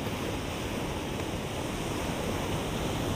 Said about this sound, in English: The sound of the waves is so soothing, and you begin to feel more and more relaxed with each passing moment.